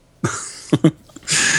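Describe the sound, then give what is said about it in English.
A few sharp coughs in quick succession in the background, followed by a hoarse, breathy throat-clearing rasp, with no talking. “You can't edit out when I'm spitting gold and you're coughing in the background.”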